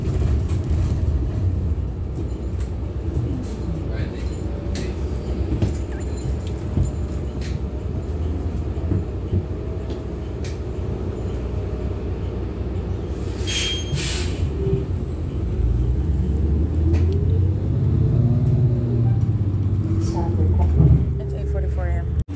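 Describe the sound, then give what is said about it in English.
The engine of bus number 1330 in Upland, California, rumbles low and steady from inside the moving vehicle, with road noise, occasional rattles and clunks, and faint indistinct voices in the background throughout. “This is bus 1330, license 1404974.”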